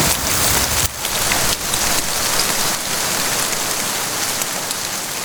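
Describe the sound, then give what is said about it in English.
Steady rain pours down at night, a dense continuous hiss of drops striking a surface, fairly loud, with no voices or other sounds breaking through. “She walks away into the rain, away from Jillian's house, and into the night.”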